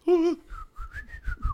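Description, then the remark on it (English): A brief sung note gives way to a man whistling a short, wavering tune as he moves along a trail, the thin whistle rising and falling over about a second, with soft low thumps underneath. “And, as you guys start moving forward, he starts whistling.”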